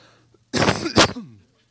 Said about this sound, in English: My allergies have been acting up, and I don't want to, like, destroy your ears with the coughing. You can hear it, right?